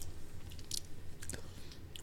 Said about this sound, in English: A lot of clicking mouths, which I used to find disgusting when my sister would make that sound when she'd chew her cereal.